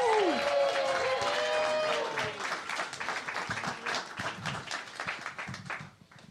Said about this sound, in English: Please start clapping right now